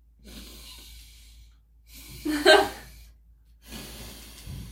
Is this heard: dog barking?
no